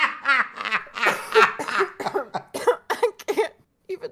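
A loud fit of coughing: a rapid run of a dozen or so harsh, voiced hacks over a few seconds, trailing off with a final short cough, no talking.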